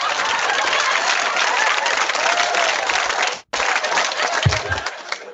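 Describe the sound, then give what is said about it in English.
A studio audience applause sound effect: loud, steady applause from a large crowd, a dense wash of many clapping hands that cuts off abruptly for an instant, then resumes and gradually thins out at the end. “The live studio audience agrees with me.”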